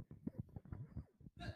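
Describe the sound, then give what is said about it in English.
A single sharp sneeze bursts out at the very end, loud and breathy, right after a brief stretch of murmured vocal sounds. “Bless you.”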